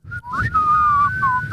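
A person whistles a short, clear tune, the pitch sliding up and down over a few seconds with a faint low rumble beneath.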